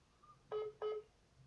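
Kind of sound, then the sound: signal or alarm, telephone call tones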